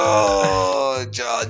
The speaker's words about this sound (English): Was that big yawn exciting to you? You seem to be paying attention a lot now.